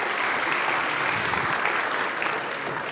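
crowd, round of applause

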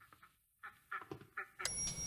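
bird, ducks quacking

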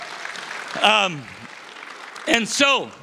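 crowd, audience hand clapping

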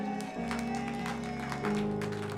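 crowd, audience clapping

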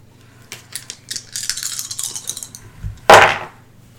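dice being rolled

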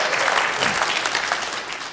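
crowd, audience applause

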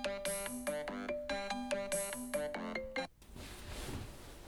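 signal or alarm, mobile phone ringing

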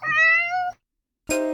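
animal, cat meowing

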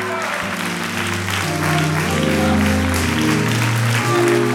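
crowd, audience clapping hands

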